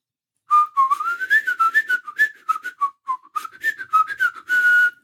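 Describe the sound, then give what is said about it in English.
A person slowly whistles a riff, mixing blowing and sucking, the pitch stepping up and down through a string of breathy notes, ending on one long sustained tone. “Here's me whistling it now.”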